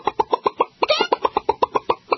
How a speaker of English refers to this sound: the third one, if it does come up for you, which you hope, it goes bah, bah, bah, bah, just screaming like the chicken's been shot